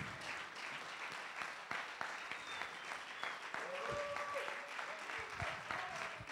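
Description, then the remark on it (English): A crowd applauds steadily for several seconds for a couple's 51st wedding anniversary, the dense clapping carrying a few scattered whoops and voices rising above it toward the end. “Don't clap, just throw money.”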